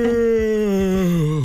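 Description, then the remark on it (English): A long, voiced yawn, a steady moaning tone held for over a second that sags lower in pitch as it trails off, with no talking. “Why are you yawning like that?”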